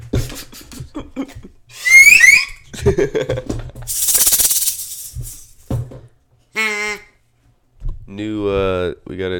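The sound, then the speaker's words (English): A Mallard Magic duck call, used as a noisemaker, is blown after some talking and a brief hissing noise: a short nasal quack, then a longer buzzing, wavering quack, both loud and reedy. “I got a duck call here. Mallard Magic is the brand.”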